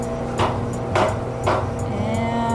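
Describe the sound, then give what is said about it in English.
A tool is pushed through the plastic liner of a sediment core fresh from the seafloor, to take a gas sample with a syringe, in three sharp, crunchy punches about half a second apart, followed by a few lighter clicks, all over a steady low mechanical hum. “Punching this tool through the liner.”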